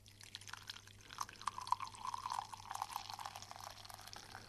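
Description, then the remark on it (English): Tea pours steadily into a cup for several seconds, a continuous splashing trickle with a slight rising tone as it fills, with no voices. “The sound of pouring tea, no interruption.”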